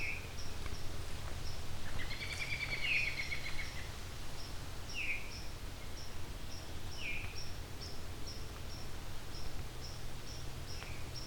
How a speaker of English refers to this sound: Think we have a black and white warbler, but I want to hear that a few more times to be sure it's not a red start. And I want to see the bird too.